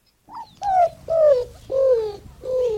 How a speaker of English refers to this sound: Roadrunner, of course! Bird experts know it as the greater roadrunner.